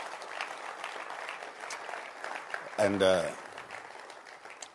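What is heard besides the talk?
audience clapping hands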